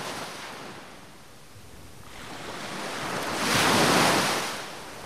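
Ocean waves wash onto a shore, a broad hiss that eases, then builds into a louder breaking surge before fading again. No voices, with faint wind in the background.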